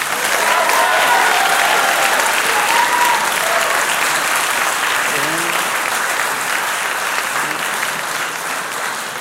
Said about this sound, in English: Thank you so much to the guests. A big round of applause for the panelists, everybody.